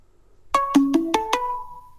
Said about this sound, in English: Well, the weird thing is, like, I'm way in the Google universe. I have a, like, Google Fi phone. And that was actually somebody calling me on my actual phone.